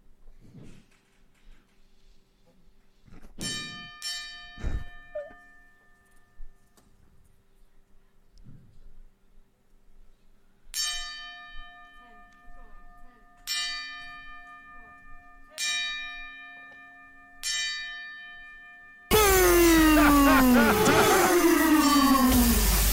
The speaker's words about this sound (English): Join us in a 10 bell salute. 10 bells, baby. Hit it 10 times.